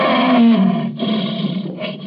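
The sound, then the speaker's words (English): A captive lion at a palace in Zanzibar roars loudly, one deep, rumbling roar lasting about two seconds, with a throaty growl running through it and no voices. “was the palace where Sayed Khalif lived with his fat wives and his captive lion”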